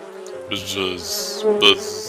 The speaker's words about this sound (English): Buzz. It's our friendly neighborhood bee, Neo. Ah, yes, the bee. Buzz. Hello, bee.